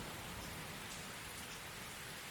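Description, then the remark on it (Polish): Heavy rain pours down in a steady, dense hiss that fills the whole clip without a break. No voices are heard, only the constant wash of falling water. “Panie, deszcz leje, jak sam widzisz, odzienia brakuje trochę.”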